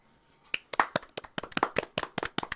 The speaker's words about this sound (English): Tempest Tops! I forgot an S, but that was pretty good. Everybody clap.